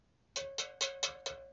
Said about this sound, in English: Do we get like a bell ring or anything like that around here?